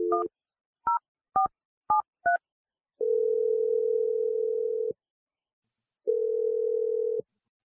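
A telephone being dialed: a short tone, then five quick two-tone keypad beeps, followed by two long steady ringback tones separated by silence, with no talking.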